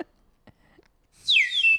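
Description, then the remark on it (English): A slide whistle from South Africa plays a quick, bright glide, swooping down in pitch and then holding a high steady tone, loud after a moment of near silence. “My sister went to South Africa and brought me back a slide whistle.”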